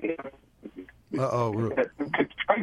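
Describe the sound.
A voice comes through a thin, phone-quality cell phone line that briefly fades and breaks up into choppy, garbled fragments before returning at full strength.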